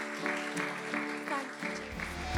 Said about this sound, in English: Come on, let's give our Lord an applause. He deserves it. He deserves it.